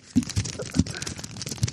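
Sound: paper crinkling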